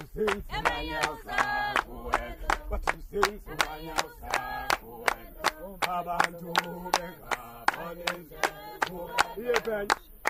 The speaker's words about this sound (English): This song is about learning not to fear the baboons, which can be ferociously pesky in their quest for food. The singers stomp in place around a circle, gyrating their arms and torsos in a monkey-like motion.